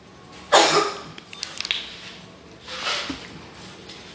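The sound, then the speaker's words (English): Sputtering coughs from someone who has just choked on water: a sharp loud burst, a few short ragged hacks, then a second softer fit of coughing. No talking. “That question just choked me.”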